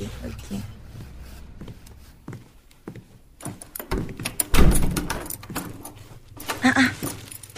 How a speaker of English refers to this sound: why you dey lock the door?